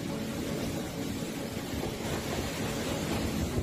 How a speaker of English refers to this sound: The sound of Cyclone Judy as it swept through Vanuatu at the end of February, bringing strong winds gusting to 200 kilometres per hour, heavy rain, and the evacuation of some residents from the capital, Port Vila.